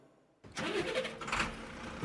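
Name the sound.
truck engine starting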